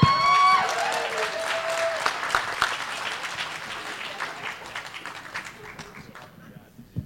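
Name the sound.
audience applause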